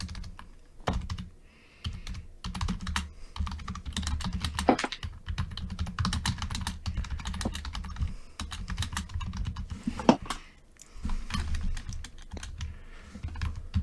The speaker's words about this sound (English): You know you can type faster. Shut the fuck up. I'm typing as fast as I can.